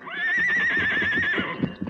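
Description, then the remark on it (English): A horse named Silver, the Lone Ranger's horse, gives a loud, wavering whinny that holds a high, quavering pitch for over a second before trailing off, with a few soft hoof clops and shuffling underneath. “Your horse named Silver.”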